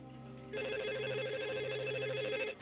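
A telephone rings once over the line as a 911 emergency call connects, a steady, bright trilling tone lasting about two seconds, clear and fairly loud against a faint background hum, with no one speaking.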